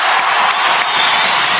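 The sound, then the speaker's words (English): A loud, steady wash of crowd applause, dense overlapping claps with a faint cheer mixed in, sustained evenly throughout without pause. “All right, let's go ahead and get to the part of the part where we go ahead and get a round of applause so everybody's still up there.”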